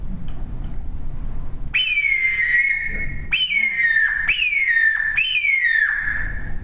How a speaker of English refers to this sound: But this is a hawk call. I love this call up in a day. And a turkey will answer this when it won't answer nothing else.